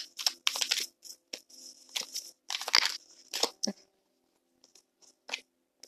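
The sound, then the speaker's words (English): Tarot cards being shuffled: a quick series of crisp, papery riffles and slaps in irregular bursts, busy and fairly loud at first, then thinning to a few soft flicks toward the end. “And let's continue with some shuffling.”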